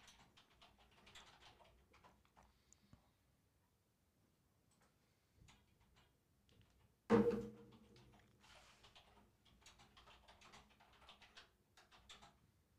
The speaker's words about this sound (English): Do you guys hear the clacking of the keyboard? Sounds like popcorn.